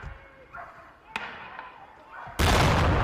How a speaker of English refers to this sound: Jesus. So there's a couple of gunshots and then a really big explosion. Of course, that's going to be enough to set off the car alarms.